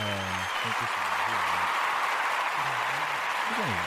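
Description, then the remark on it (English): A steady wash of applause for a guest who has just walked in fills the whole four seconds, a dense crackle of clapping hands with a few voices calling out underneath. “Gonna give man some applause.”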